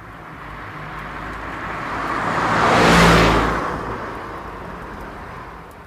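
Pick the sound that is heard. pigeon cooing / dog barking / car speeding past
car speeding past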